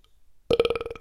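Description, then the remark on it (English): After a short silence, a single loud burp erupts, lasting about half a second with a croaky, rapidly pulsing rasp before it trails off. “Let out a burp and said, I'm going to sleep good tonight, knowing that snake is not in the roof, but in my belly.”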